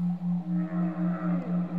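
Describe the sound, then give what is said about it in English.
Whale song played as in-flight entertainment during a flight: a low, droning moan that throbs in steady quick pulses, with fainter gliding higher tones drifting above it, heard on its own without any voices. “Only 11 hours of whales and waterfalls to go.”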